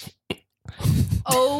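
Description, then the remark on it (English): A single sharp slap during an improv scene lands once, brief, followed by a burst of noisy commotion and a loud voiced exclamation. “There's no slapping, dude, in life or improv.”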